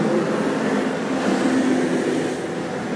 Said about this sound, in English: That was a bus, number 97.